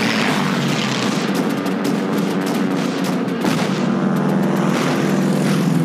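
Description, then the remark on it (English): Warplanes roar overhead in a loud, continuous battle din in a war movie scene, their engine drone mixed with bursts of gunfire and heavy artillery booms as a ship fires at the planes, with no voices. “Because it seems very easy for the ship to just knock the planes down.”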